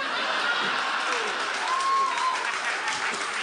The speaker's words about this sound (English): Do a rainbow prism from red to purple? And you applaud for your favorite color.